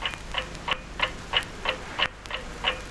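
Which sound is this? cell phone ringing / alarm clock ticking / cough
alarm clock ticking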